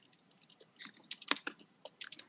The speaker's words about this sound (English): Who's typing?